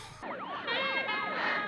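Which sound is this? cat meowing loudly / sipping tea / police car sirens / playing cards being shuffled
police car sirens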